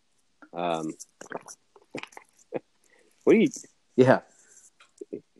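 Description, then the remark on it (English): Wet gulping and swallowing sounds of a person drinking Gatorade, with small mouth clicks, broken up by a few short voiced breaths or satisfied sighs between swallows. No actual words are spoken. “But what are you drinking, man? Because I can hear you gulping that.”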